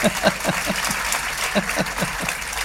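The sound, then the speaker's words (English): An audience applauds in a steady, dense patter of many hands clapping, moderately loud throughout, with a few faint voice fragments mixed into the noise. “Am I allowed to clap?”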